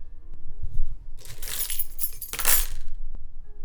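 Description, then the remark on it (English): A bunch of keys jingles and clinks in two bright metallic bursts, the second ending in a sharper rattle as they land, with no talking. “Here's my keys.”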